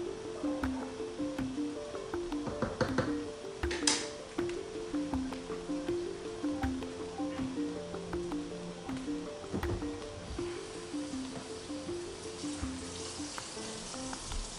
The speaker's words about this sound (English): Mix my noodles around.